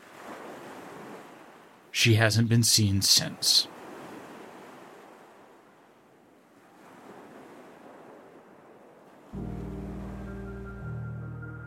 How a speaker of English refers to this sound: The keys had been discarded near a stony cliff that dropped into crashing, rocky surf.